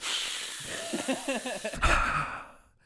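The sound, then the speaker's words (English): A voice imitates the loud, heavy breathing of a man seated beside them in a movie theater, a long hissy exhale with some voiced wavering, ending in a sharp nasal rush of air before fading out. “he was breathing so heavy, I could smell his breath through his nose”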